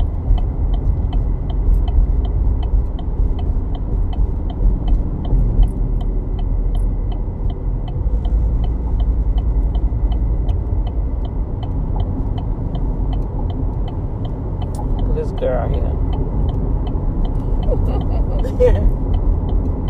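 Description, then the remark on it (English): A car driving in stop-and-go traffic behind a procession, with cars jumping in front and forcing sudden stops, heard from inside: a steady low rumble of engine and road noise throughout, with a few brief sharper clicks and rattles near the end. “The car's jumping in front. The procession making everybody have to stop suddenly.”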